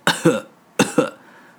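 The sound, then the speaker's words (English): A voice imitates a horse coughing: two pairs of rough, breathy coughs, each pair quick and close together with a short pause between the pairs, loud. “he also starts, like, coughing a little bit.”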